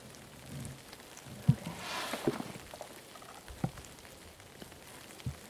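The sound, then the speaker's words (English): Light rain falls steadily outdoors, a soft continuous hiss dotted with occasional louder drops striking surfaces. The patter stays fairly quiet, with no voices present. “Yeah, it has started to rain, which is a bit unfortunate, but.”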